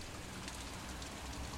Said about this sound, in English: It's 1914. You're in Belfast in Northern Ireland. It's nighttime and you're standing on the street in the rain outside a small hardware store named Morrison's.